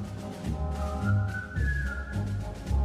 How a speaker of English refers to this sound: Still in the World War II, now we're going to Bridge Over Kwai. 1957 movie. This was the kind of one of the main songs from this movie about Japanese prisoners of war. All right. Kind of sounds like Seven Dwarves, doesn't it?